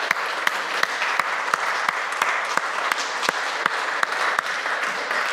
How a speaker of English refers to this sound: They've been a great staff to work with, by the way. Let's give Bonanzaville a round of applause.